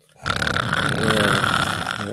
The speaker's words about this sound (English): Gargling. Yeah, man.